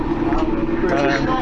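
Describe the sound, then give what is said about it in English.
Steady, droning engine rumble inside a moving number 91 city bus travelling to Leicester Square, loud and continuous throughout, with a hum of cabin noise and indistinct voices mixed in. “Okay, so we are on the number 91 bus and we're travelling to Leicester Square, where we've arranged to meet all of my followers on Twitter because I've sent them a Twitter message.”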